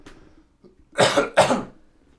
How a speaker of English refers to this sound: oh my gosh, hang on. I'm going to cough, but, like, outside of the microphone.